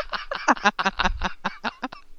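Geese honk in a rapid, uneven run of about a dozen harsh, nasal calls, loud, with no talking over them.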